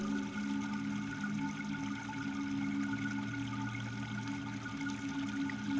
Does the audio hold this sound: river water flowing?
yes